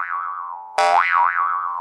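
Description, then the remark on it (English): A cartoon boing sound effect of a bomb bouncing a few times: a wobbly, twangy tone trails off, then a second sharper boing springs up and warbles up and down in pitch as it fades. No voices. “And it was bounced a few times,”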